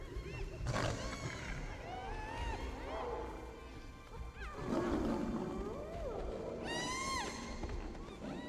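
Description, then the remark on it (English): Hyenas and a lion fight in a loud, chaotic clash, with sharp bursts of roaring and snarling amid the hyenas' high, wavering whoops and yelps throughout. “The hyenas can take out a lion.”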